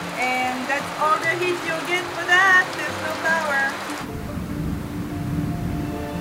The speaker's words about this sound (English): The jungle had its ways of reminding us where we were. We are literally surrounded by the jungle. Rainstorms were frequent, and the power would often go out.